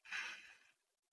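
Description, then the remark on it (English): A single soft, airy breath drawn in through the nose during a guided breathing exercise, lasting about half a second and fading away, with no talking. “And whenever you're ready, let's all do that again. In through the nose.”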